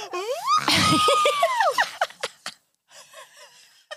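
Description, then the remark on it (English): A voice lets out an exaggerated, wailing mock cry that swoops up in pitch, breaks into loud sobbing scream-like bursts, then trails off into softer whimpering sobs. “Yeah, that was more of like a cry, sob, scream than like, let's celebrate this country.”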